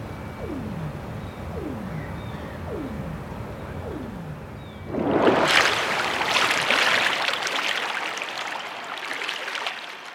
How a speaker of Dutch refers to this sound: Maar jeetje, zeg, wat een herrie daar onder water, hè? Je kan je het bijna niet voorstellen, maar het klinkt wel als een soort enorm industrieterrein, Harpo. Ja, er wordt natuurlijk ook een heleboel gevaren en gevist en gebouwd.